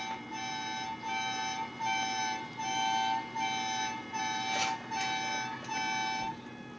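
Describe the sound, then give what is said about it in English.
An electronic alarm beeps in a steady repeating pattern of tonal pulses, about one per second, loud and continuous with no voices, with a brief burst of noise partway through. “TV come on, chair move, you know, all the alarms are going off.”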